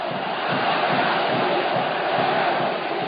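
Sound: crowds cheering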